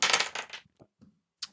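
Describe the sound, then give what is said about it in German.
A die rolls across a table: a bright rattle of tumbling clicks, a few soft taps as it settles, then one more sharp clack. No voices. “Ich sollte doch den 20er Würfel nehmen.”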